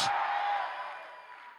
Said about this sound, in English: Come on, clap your hands. And shouting and screaming and say yes.